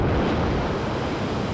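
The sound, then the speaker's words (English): A dense, steady rush of water, loud, like surf or churning waves surging in with a broad roaring hiss and no voices, as the water closes in around Mia. “Then the water closes in around Mia.”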